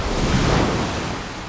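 Ocean waves crash in a broad, loud wash of surf that swells early and slowly recedes, with a windy rush mixed in and no voices.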